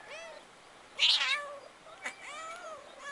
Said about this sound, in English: I kind of want to watch this shit in action. I want to get a video up. I need to see how these kitties get down.